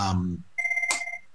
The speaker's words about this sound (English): sorry, my phone's going. I'll just keep turning it off.